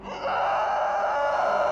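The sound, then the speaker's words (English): A creature's enormous bellow: one loud, sustained, roaring moan that swells in after a brief start and holds steady and rough-edged for nearly two seconds, with no talking. “Once it became within touching distance of the girl, it gave an enormous bellow.”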